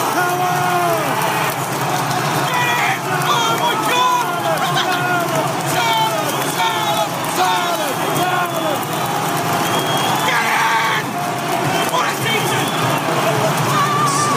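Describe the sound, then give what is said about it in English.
A football crowd celebrates a goal, recorded on a phone right after the goal was scored, with loud, continuous screaming and shouting from many overlapping voices that never lets up, some individual cries rising sharply above the roar, including the recordist screaming. “I basically, as soon as we scored the goal, I whipped my phone on and recorded a video.”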